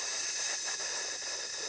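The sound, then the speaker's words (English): A steady, breathy hiss of air pushed out through closed teeth as an elongated exhale in a relaxation breathing exercise, after a deep breath held for 2 to 3 seconds, sustained evenly with a bright, high-pitched sibilant texture and no pauses. “And as I hear that hissing sound that I'm making myself, I imagine a tire, an overinflated tire, just relaxing.”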